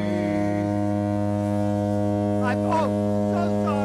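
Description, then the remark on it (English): A ship's horn blares one long, loud, low-pitched blast that holds steady for the whole stretch, while a voice briefly speaks over it partway through. “Sorry, I was beeping the horn.”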